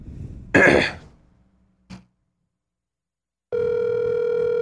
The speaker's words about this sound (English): For our audio listeners, we're currently waiting for someone to pick up the phone. I think they figured that out. Wait, how they would hear the ringing.